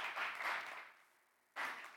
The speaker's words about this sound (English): I take it by the level of applause.